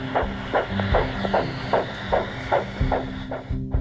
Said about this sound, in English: And his young son had his daddy's heartbeat right there with him.